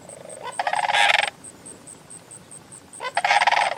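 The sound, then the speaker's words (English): Mississippi sandhill crane calls ring out in two loud, rolling, trumpeting bursts separated by a short pause, while a steady, high-pitched insect chirr pulses in the background. The cranes are long-legged, about 4 feet tall, almost entirely gray with a rust-colored crown. “There's something arresting about the Mississippi Sandhill Crane.”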